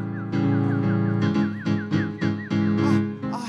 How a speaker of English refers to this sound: And that weird bird. That's a kookaburra.